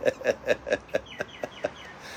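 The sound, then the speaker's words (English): Birds at a porch call in a quick, steady series of about eight short, sharp notes, evenly spaced, with the last few growing thinner. No one speaks. “Oh, you hear the birds?”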